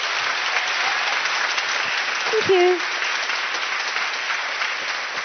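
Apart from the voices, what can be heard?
audience applause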